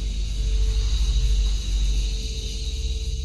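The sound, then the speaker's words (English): Cicadas buzzing in a steady, high, shimmering drone that never breaks, layered over a constant low rumble. No one speaks. “Cicadas.”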